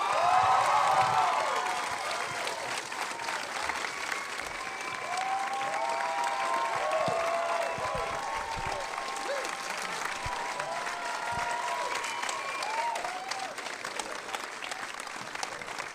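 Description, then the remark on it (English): A crowd applauds steadily for the full length for Elsie Fisher on a Saturday night: a dense wash of clapping, with scattered whoops and cheers rising above it, loudest at the start and holding fairly even throughout. “Keep the applause going for the only person it really should be for, the coolest girl in the world, Elsie Fisher.”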